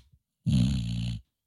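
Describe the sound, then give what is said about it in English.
A single loud, rumbling snore from Chi-Chi, a dog, lasts under a second, with a raspy, growly texture and silence before and after. “Okay, by the way, Chi-Chi, that is Chi-Chi snoring.”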